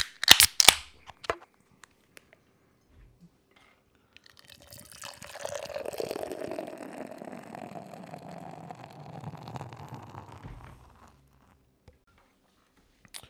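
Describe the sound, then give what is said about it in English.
A sharp hiss and clink as the cap pops off a Brouwerij West beer bottle, followed after a pause by a long, steady pour into a glass, the gurgling tone shifting downward as it fills. “Let's crack this guy open.”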